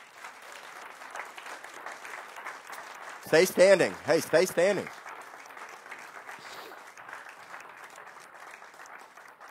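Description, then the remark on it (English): Steady applause from a large audience at Victory church for longtime members who stood up, a dense wash of clapping, while a man's voice briefly calls out over it near the middle. “If you were part of Victory back in those days, let's give them a hand clap right now.”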